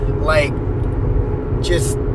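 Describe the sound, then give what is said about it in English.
Steady low rumble of road noise from inside a moving Kia Optima with a busted-up windshield and a dented fender, droning continuously throughout, with brief bursts of a voice breaking in over it. “As you can tell, I'm in the Kia Optima with all the road noise, my busted up windshield, the dented fender.”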